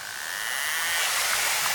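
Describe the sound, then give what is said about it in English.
A narwhal feeding buzz, made as the narwhal closes in on food: clicks run together into a fast, raspy whir that holds steady and grows slightly louder over a couple of seconds, with no voices. “Well, scientists realized that narwhals made this noise when they were getting closer and closer to food.”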